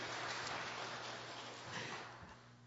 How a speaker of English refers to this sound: How many teenagers in the house? Just a few. Can we clap for them, please? Let's clap for the teenagers.